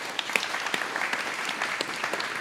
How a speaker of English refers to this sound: Yeah. Let's clap for that.